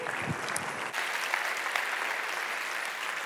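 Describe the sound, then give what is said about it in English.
Sustained applause from an audience encouraging students who sing: a dense, steady wash of many hands clapping at once, with a few louder claps popping out near the start. “And so we clap to encourage our students as they sing.”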